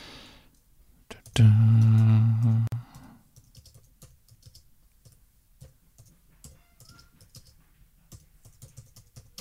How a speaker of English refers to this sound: I'm just typing a little here.